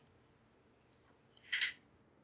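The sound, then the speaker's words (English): A few sharp, sparse clicks followed by a short, bright clatter of many dice being rolled across a hard surface. Fairly quiet, with no one talking. “Okay, I got a million dice.”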